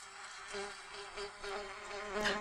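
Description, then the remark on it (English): A bumblebee buzzes steadily for a couple of seconds, a low droning hum with rich overtones that swells and fades slightly as it moves, rising briefly near the end. No one speaks. “Wow, what was that? That was a bumblebee.”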